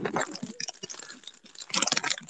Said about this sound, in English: We can hear those apples being chewed. Yeah, I know.